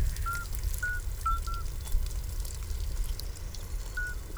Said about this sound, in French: Ça calme tous les nerveux. Et c'est pourtant un petit crapaud qui chante.